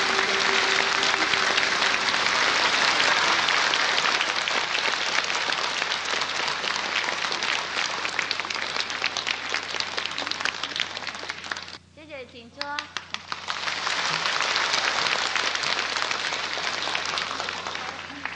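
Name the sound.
warm audience applause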